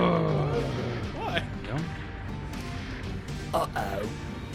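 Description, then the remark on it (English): Dice clatter around a dice tray during a tabletop role-playing game constitution check, rolled over and over for a 20, in short bursts of rattling clicks while several people talk and laugh over the top of it. “Yeah, roll your tray more. Yeah, do this until you get a 20. Like you're panning for gold.”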